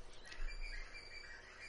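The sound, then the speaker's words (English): Faint bird chirping at a lounge carries on steadily for a moment, a thin layer of high twittering calls over quiet outdoor background noise, with no one speaking. “an announcement by the birds that I am talking.”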